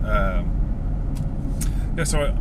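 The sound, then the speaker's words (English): A steady, low rumble of road traffic fills the background, with cars passing continuously, and a few brief voice-like sounds rising above it. “There's still a fair bit of traffic.”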